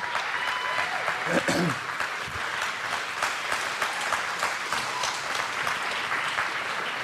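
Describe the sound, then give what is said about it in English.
An audience applauds drummers steadily for several seconds, a dense, even patter of many hands clapping, with a brief cheer or shout rising out of the crowd early on. “See, now you're able to receive applause.”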